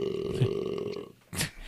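burp

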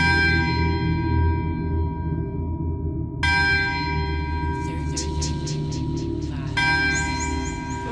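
bells ringing

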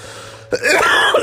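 cough

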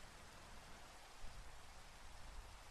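rain

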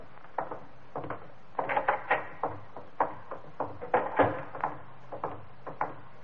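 door opening or closing

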